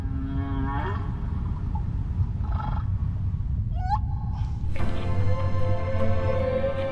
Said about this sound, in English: Why male humpback whales sing remains a mystery to researchers. It's possible males sing to attract females, or as a display of dominance over competing suitors.